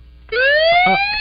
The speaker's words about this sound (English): Ambulance on the field.